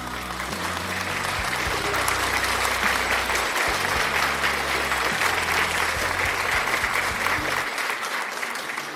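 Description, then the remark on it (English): An audience claps steadily for several seconds, a dense, sustained, loud wash of many hands applauding together, with a low hum beneath it before it thins out at the end. “Give a clap of them unto the Lord.”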